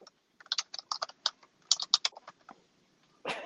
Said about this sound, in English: Fucking keyboard. I can't help it, bro.